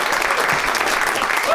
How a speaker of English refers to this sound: And one more round of applause for all of my guests.